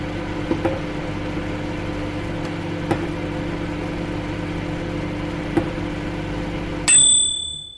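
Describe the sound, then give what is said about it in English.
A dishwasher hums steadily with a few faint clicks, then gives one bright, high-pitched electronic beep that rings briefly and fades as the hum stops. “I don't understand why our servant hasn't switched off the bleep on the dishwasher”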